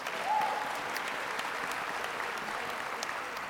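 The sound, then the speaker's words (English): An audience applauds the people running its parking and security, a dense, even patter of many hands clapping at a moderate level throughout, with a brief faint whistle-like tone near the start. “Yes, let's give them a round of applause.”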